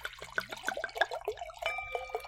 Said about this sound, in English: I'm going to pour my wine now and pray that it didn't go bad or something.